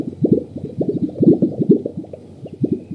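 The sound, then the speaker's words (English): A male grouse's chest air-sac display call, resonated from deep inside its chest during its dance display in dry sagebrush: a rapid, steady run of deep, hollow plops and pops, bubbling like water percolating, fairly loud and continuous for the whole stretch with no voices. The call carries long distances. “they resonate a vocalization that comes from deep inside their chest”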